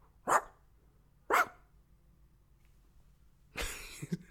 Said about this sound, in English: You know, his legs are kicking and he's sleeping and dreaming and barking. Sleep barking.